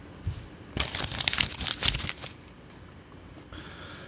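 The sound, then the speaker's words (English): A paper note found on a key hook crinkles and rustles as it is unfolded, a dense burst of crisp crackling lasting about a second and a half, then fading to quiet with a faint rustle. “This note was there, and it was on the key hook where I put my keys. Let me read this.”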